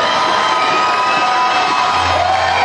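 A large concert crowd cheers loudly and continuously for the band to come back on, a dense wash of shouts, whoops and applause with no pauses, holding steady throughout.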